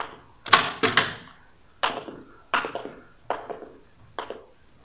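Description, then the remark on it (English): A hospital room door being forced open: a series of six loud wooden thumps and rattles at uneven intervals, with no voices. “You want to open the door?”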